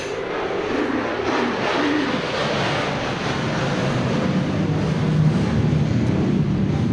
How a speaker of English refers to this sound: Let that plane go over.